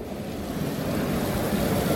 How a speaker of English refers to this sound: This is not the sound of the sea, though, but the fountains in Nice's Cathedral Square.